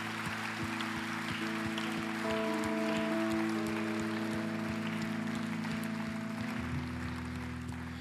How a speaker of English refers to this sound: Let's clap it up for these folks as they return to their seats.